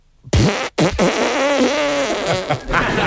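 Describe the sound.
A voice imitates a chainsaw pull-start while miming bending over and ripping an arm back: a short loud rasping burst, a brief break, then a long buzzy, sputtering drone that wavers in pitch for a couple of seconds.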